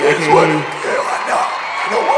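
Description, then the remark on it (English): A steady, fairly loud wash of crowd cheering with overlapping whooping voices that rises and falls slightly over a couple of seconds; any clapping is buried under the voices. “Sir, after talking, hold on, wait till they finish clapping, and then I can talk to you.”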